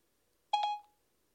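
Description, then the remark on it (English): A short electronic two-note chime from a phone, the Siri voice assistant activation tone after "Hey, Siri" is said, bright and clean, lasting under half a second with a quick ringing tail, alone against silence. “Sometimes you can even ask Siri. Where's my Siri? Where's my phone?”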